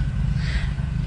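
A car drives along the street, its steady low engine rumble swelling briefly as it passes, with no voices.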